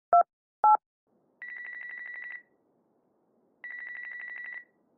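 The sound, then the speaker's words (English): Two quick keypad beeps as a man in his car dials his phone, then two trilling electronic rings about a second long, separated by a pause. Clear, with no voices. “Kyle looks at his watch, then pulls out his phone and dials.”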